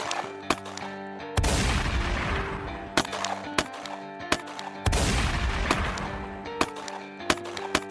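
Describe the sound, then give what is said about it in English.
Sharp gunshots crack back and forth at irregular intervals, broken by two longer stretches of dense, rumbling fire, as police officer William Remo Cody exchanges gunfire, including shotgun fire, with Billy Burt at a bank's back entrance in the 1970s. No voices are heard. “But within just minutes, police officer William Remo Cody arrived at the back entrance of the bank and immediately started exchanging gunfire with Billy Burt.”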